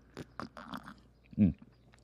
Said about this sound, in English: Should I do the slurp?